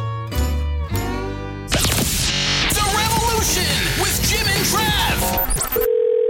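Steady telephone tones sound at the start, then a dense, busy burst of music and voices takes over before a short steady dial-like tone returns at the very end.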